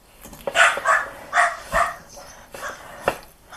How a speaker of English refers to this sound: And your dogs sound like have some thoughts on the subject.